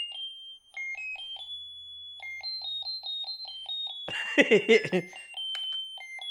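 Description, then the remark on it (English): An alarm clock, set to go off right away, rings with steady, rapid repeated beeping that runs throughout, briefly drowned out midway by a loud burst of voices before continuing. “I just need to set the alarm to go off now.”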